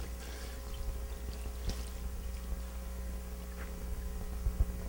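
Liquid is poured steadily into a jar, a soft continuous trickle lasting several seconds with a faint low hum underneath and a couple of small clinks. No one speaks.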